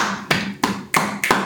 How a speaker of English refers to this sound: Round of applause for him, please.